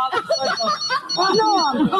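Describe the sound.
A telephone rings with a steady, high electronic trill running throughout, partly covered by voices talking loudly over it.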